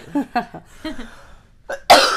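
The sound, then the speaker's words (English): A series of short coughs in quick bursts, ending in one louder, harsher cough that trails off noisily. “I know this cough.”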